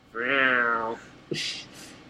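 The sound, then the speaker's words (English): A person imitates a cat's meow with one drawn-out, falling vocal cry, followed by a brief thump and a couple of soft, hissy breaths. The sound is fairly loud. “You're not going to be You're just going to make cat-sounding grunts.”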